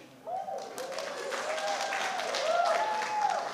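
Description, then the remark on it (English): An audience at a meeting breaks into applause after a speaker's remarks on critical race theory, following a brief quiet moment. The clapping is a dense, steady wash that holds throughout, with voices or cheers rising and falling over it. “Well, people applaud, and then my minute was over”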